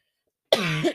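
coughing

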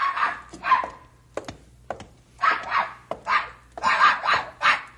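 dog barking

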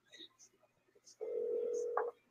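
telephone dialing tones

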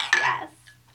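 glasses clinking

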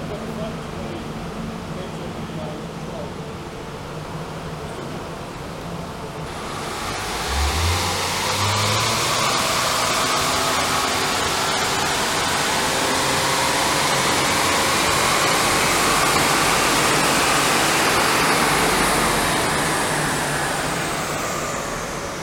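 car engine revving

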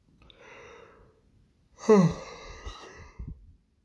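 yawn

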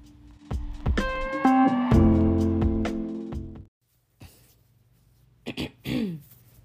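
throat clearing

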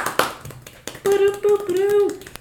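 hands clapping

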